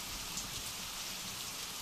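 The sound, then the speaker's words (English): Heavy rain pours down during a storm, a dense, steady hiss that holds at an even level throughout, with no voices or other distinct sounds. “This was one heck of a storm.”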